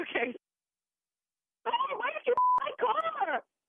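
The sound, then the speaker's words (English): A brief electronic telephone tone, a single steady beep bracketed by clicks, sounds between stretches of muffled, phone-filtered voices talking, as a call is connected three-way from a radio station. “She's actually calling me right now. Three-way the call in, and we'll sit back from the radio station and just listen in, all right?”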